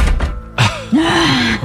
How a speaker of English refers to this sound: Here's the first one. That door was just closed.